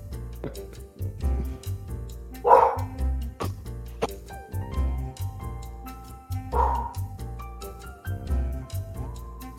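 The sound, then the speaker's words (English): A dog barks repeatedly in short bursts while the wind is blowing, a few woofs close together, then pausing before another round, fairly loud with some background noise. “My dog thinks he's a gardener, so I may need to go close my door here because the wind's blowing. He's barking.”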